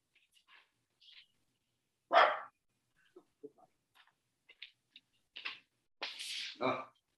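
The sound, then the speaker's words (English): A dog in a kennel barks: one loud, sharp bark, a pause filled with faint scattered clicks and rustles, then two or three quick barks close together near the end. “Dogs have been in the kennel too long.”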